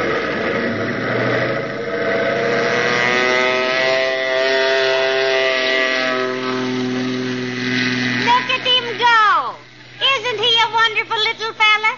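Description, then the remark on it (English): A small government plane's engine drones loudly and steadily during takeoff, its buzzing tone holding for several seconds, then the pitch swoops and warbles in rapid surges toward the end as it revs up. “Did you see that takeoff?”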